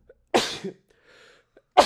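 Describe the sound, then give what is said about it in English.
A loud sneeze bursts out, followed by a brief faint sniffle, then a second sharp sneeze starts right at the end. No talking is heard. “I don't know why I keep sneezing, dude.”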